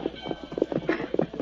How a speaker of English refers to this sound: On the far side of the tracks, a masked man and an Indian approached on their horses.